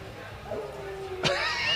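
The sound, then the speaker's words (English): A bluetick coonhound lets out a loud howl: a sustained wavering tone that erupts into a harsh, full-throated bay near the end. “Sounds like a blue tick to me.”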